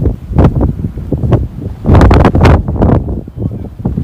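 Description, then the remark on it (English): Loud, roaring wind from a large tornado buffets the microphone in uneven gusts, swelling into a harsh, noisy surge midway before easing into a lower, rumbling rush. No voices are heard. “It really does sound like a whistle.”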